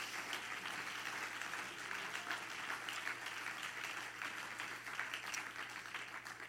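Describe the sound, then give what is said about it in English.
A crowd at Grace Church claps steadily throughout, a dense, continuous wash of many hands applauding at an even level, with a low steady hum underneath and no clear speech. “Everybody clap your hands one more time.”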